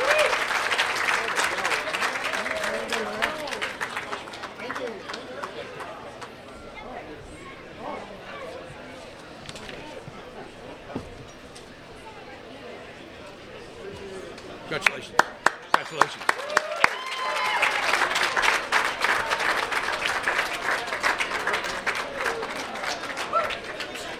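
Sustained audience applause for an inductee into the Cassidy School Athletic Hall of Fame, a dense wash of many hands clapping that swells loudly, dips briefly in the middle with a few sharp individual claps, then rises again.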